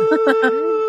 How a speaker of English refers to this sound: Oh, that's our goose. That's Triad Goose. Yeah, that's Goose. That's Goose.